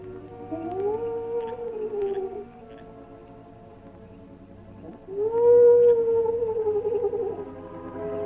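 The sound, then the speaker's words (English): Two long, low, mournful owl cries at night, each a wavering hoot that rises and then falls, separated by a short pause of quiet background hum. “At regular intervals, he paused, and the low, mournful cry of the owl was heard through the night.”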